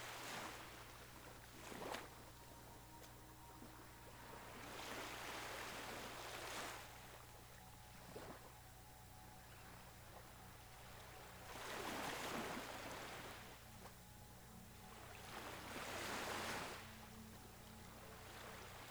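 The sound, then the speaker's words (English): Gentle waves wash against a shore where a boat is being beached, in soft, repeated surges every few seconds, each swelling and fading, over a steady low hum with no voices. “You jump out of the boat into the water, holding on while the gentle waves help beach it on the shore.”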